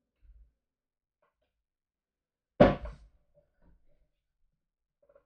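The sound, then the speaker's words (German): A single loud wooden thunk as a dropped spinning project is retrieved from behind a chair, followed by a brief rattle and a few faint small knocks in otherwise quiet surroundings. “Genau, mir ist gerade mein Spinnprojekt hinter den Stuhl gefallen, das muss ich eben holen.”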